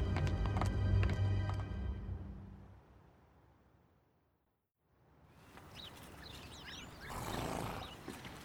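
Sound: horses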